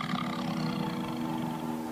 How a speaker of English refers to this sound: It's a tiger. That's it. You got it.